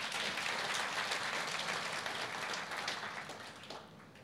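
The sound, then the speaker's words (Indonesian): A crowd claps steadily in a dense, sustained wash of hand claps for several seconds, holding loud before thinning slightly toward the end, with no one speaking. “Wah, wow, luar biasa tepuk tangan saudara.”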